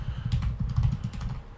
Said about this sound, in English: I'm typing in chat.